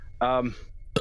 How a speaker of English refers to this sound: Bless you.